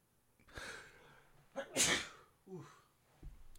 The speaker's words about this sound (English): I'm going to sneeze.